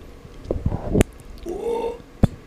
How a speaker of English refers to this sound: Look how polite he is. I know. I didn't burp straight into the mic. True professional.